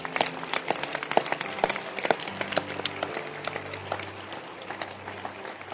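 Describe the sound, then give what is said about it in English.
An audience claps steadily, many hands creating a dense, rippling applause that holds through the whole stretch with a low hum underneath, gradually easing slightly toward the end. “Can you clap your hands?”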